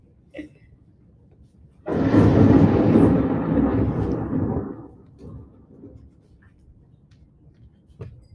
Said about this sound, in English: That storm didn't come up sudden like for nothing.